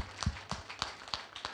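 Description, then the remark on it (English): Light, quiet applause from a church audience after singing Happy Birthday: a short run of distinct claps landing roughly every third of a second, sparse rather than a full, dense ovation. “Yes, kind of applause.”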